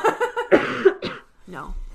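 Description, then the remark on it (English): Several harsh coughs come in quick bursts, a throaty rasp breaking up each one, with a brief pause before a final rougher cough. “Then I start coughing.”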